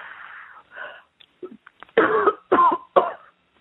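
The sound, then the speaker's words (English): A raspy throat clearing followed by three loud, deep coughs in quick succession, forceful, with brief gaps between each harsh burst, as a person is told to cough during a deliverance prayer. “Take a deep cough and they'll all come out now.”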